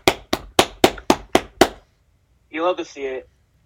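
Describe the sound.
Seven sharp hand claps in a quick, steady rhythm, loud and crisp, celebrating the Warriors winning the championship again, followed after a short pause by a brief voiced exclamation.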